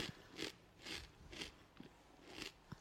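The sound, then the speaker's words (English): Crunchy chewing of spicy food, with regular bites roughly every half second, each a bright crackly burst, fairly quiet and unaccompanied by any talking. “I hope the chewing sound isn't grating on your ears, listeners.”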